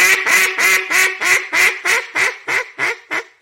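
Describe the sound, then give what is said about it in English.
A duck call blown in a steady descending series of about a dozen loud hen mallard quacks, each note cut off sharply, fading slightly in volume as the sequence comes down. “I would start with just blowing regular hens in the car and just coming down.”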